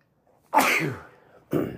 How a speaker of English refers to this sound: I'm over here kind of sick right now, and I just sneezed, you know?